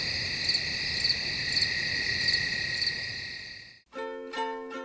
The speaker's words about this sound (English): That's what's officially known in this business as crickets. We had to get some cricket sounds in here.